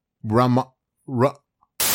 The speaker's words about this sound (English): Okay, folks, I just looked it up. I did 30 seconds of research. That's why you heard that static sound, because I didn't want you to have to listen to me Google.